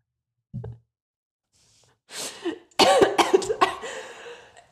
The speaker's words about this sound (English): This is too much for me. I'm choking. Hold on. I need a drink.